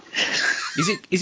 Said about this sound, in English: He's living up in Liverpool now, and he's proper sneaking around, and that's why it's heavy breathing.